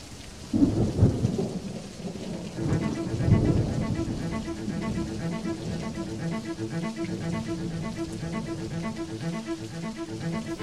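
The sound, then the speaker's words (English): Heavy rain pours steadily while low thunder rumbles loudly near the start, rolling again a few seconds later before settling into a constant, dense downpour with a faint tonal hum underneath. “A young detective drives through a terrible storm as he makes his long journey home after another tiring day at work.”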